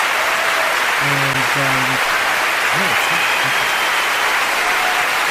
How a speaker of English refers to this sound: You know what? Let's get you an applause, first of all. Let's get you an applause if this is going to work.